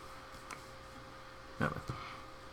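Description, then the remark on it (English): Dice rolling: a few short, light clicks and rattles, one early and a quick clatter of taps near the end, over a low steady hum with no talking. “I keep hearing the die roll noises, but I don't know why I'm hearing multiples of it.”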